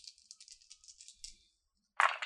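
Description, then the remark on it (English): Dice rattle and clatter in a rapid series of small clicks for over a second, then a brief pause before a louder burst of rattling as they land and settle. They are rolled for an athletics check that needs four or higher, and the total is three. “You have to roll four or higher athletics.”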